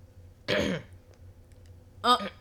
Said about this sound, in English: Don't clear your throat now. Don't clear your throat now. Don't clear your throat now, cuz.